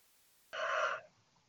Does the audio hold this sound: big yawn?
yes